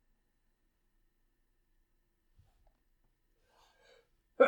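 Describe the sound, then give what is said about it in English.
After a long quiet stretch with faint breathy stirrings, a sudden loud sneeze bursts out at the very end, cut off almost as soon as it starts. “Bless you.”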